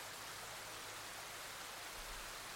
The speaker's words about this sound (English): For the next minute, can you just focus on the sound of the rain? Beautiful sound of the rain.